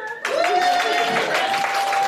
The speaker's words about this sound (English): Big round of applause for Sammo.